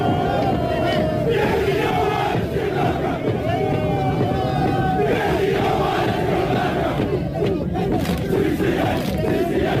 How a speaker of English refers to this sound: So he's screaming, he's beating this drum. And he puts himself in the middle, he injects himself into this crowd of high school kids while they're doing their chanting for their high school.